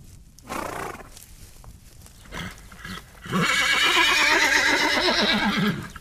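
A horse lets out a long, loud whinny with a wavering, shaking pitch, preceded by a shorter snort-like neigh and some quiet shuffling.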